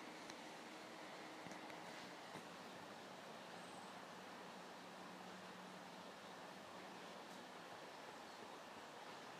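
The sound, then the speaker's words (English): Slow-moving water about 15 metres across flows with a soft, steady wash that stays even throughout, a continuous gentle murmur with no voices and no distinct splashes. “I'm talking to you beside slow-moving water.”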